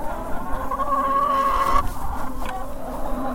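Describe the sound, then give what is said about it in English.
A rooster lets out one drawn-out crow amid steady clucking from a flock of chickens, with busy farmyard noise filling the background. “That's a proud rooster”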